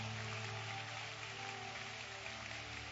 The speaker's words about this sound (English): Give the Lord a hand clap right there at your seat.